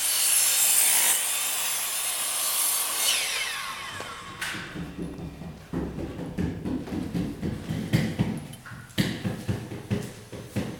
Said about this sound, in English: I have a lot of recordings from the installation and the building of the first chapter, but they were quite stressful for a listener. So I'll just show some snippets right now of like the things being sawn in half.